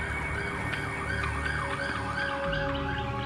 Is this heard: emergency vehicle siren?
yes